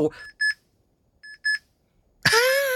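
An electronic timer beeps in two quick double pulses, clear, with a short gap between pairs, signalling that the time is up, then a voice starts talking right after.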